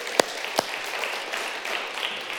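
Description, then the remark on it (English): An audience breaks into applause for a 32nd wedding anniversary: a couple of sharp, distinct claps ring out first, then a steady, moderately loud patter of many hands clapping together, with no voices. “You can clap for that, yeah.”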